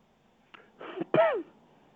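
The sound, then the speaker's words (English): A radio caller from Auckland coughs over a phone line: a short rough burst followed by a louder, harsher cough with a voiced, wheezy tail, alone with no talking. “I can hear you coughing”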